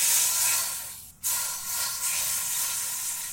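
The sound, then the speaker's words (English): Food sizzles steadily in a frying pan, a continuous crackling hiss with one brief dip about a third of the way through. No one speaks. “Alright, so frying them up a bit does give them a much needed crunch.”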